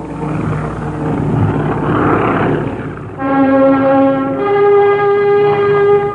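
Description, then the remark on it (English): Airplane engines roar as the plane flies at about 200 miles an hour: a broad rumbling wash, then a loud, steady droning hum that settles in, shifts down in pitch once, and keeps going without pause. “He sits behind engines, the reliability of which is all but unbelievable.”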